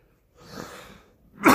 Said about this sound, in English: Excuse me, I still coughed, but I caught it this time.